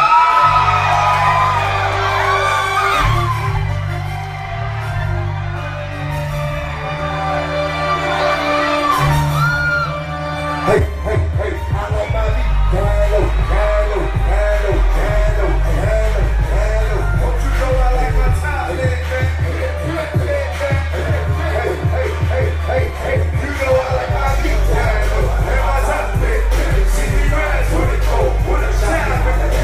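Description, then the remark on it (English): Loud hip-hop music with heavy, pounding bass plays throughout while a crowd whoops, yells and shouts along, its voices blending into a continuous cheering roar over the beat, at a hip-hop show in a tent with an elevated platform at LT's party on a Saturday night. “Let's play a little bit of what went down this past Saturday night at LT's party.”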